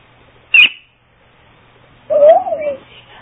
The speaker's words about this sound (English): Is there a screech? Oh, it might be inhuman. Scream female. I think I'm just going to go with the owl.